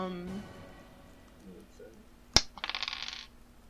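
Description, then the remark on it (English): A single sharp clack followed by a quick series of bright rattling clatters as real dice, including an eight-sided die, tumble across a hard table surface, fairly loud, with faint voice murmurs at the start. “Okay, and then I need a d8. Where the fuck is that? Sorry, I don't use real dice all the time.”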